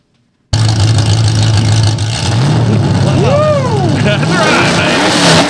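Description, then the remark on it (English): A dirt race car engine bursts to life, rumbling loudly with a rough, throaty idle before revving up and down sharply a couple of times. “fire that mother up.”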